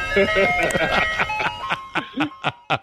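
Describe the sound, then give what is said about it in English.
A tinkling Good Humor ice cream truck jingle plays steadily in the background while someone shouts excitedly over it in short, urgent bursts, calling for the truck to stop and asking for a bomb pop. “Hold on! Stop the truck! Oh! Oh! I want a bomb pop!”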